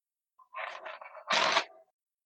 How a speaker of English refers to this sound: Okay, you guys heard that shuffle, right? It was a good shuffle.